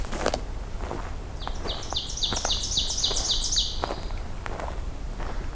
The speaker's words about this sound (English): It sounds like there's a pine warbler somewhere nearby too.